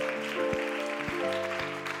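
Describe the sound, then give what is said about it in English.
A church audience claps hands to Jesus in a steady rhythm over sustained organ-like music, with heavier thumps landing about every half second beneath the dense patter of clapping. “Now, why don't you clap your hands to Jesus?”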